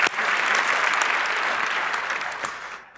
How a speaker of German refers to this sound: Die große Story, ja, ein Applaus für Netzpolitik. Ja, die machen großartige Arbeit.